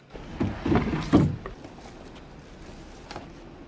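A desk drawer scrapes and thumps open with a few close wooden knocks and a brief rustle, followed by a quiet room with faint shuffling.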